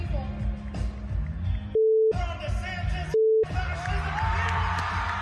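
Two short, steady mid-pitched censor bleeps cut into a loud, noisy crowd with shouting voices as Florida Representative Maxwell Frost says "F DeSantis" and "F fascism", each tone briefly replacing the sound entirely before the crowd noise returns.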